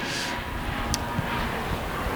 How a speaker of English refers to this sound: Is that a helicopter? Sounds like the Battle of Britain out there.